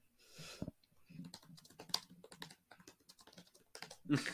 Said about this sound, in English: Man is typing.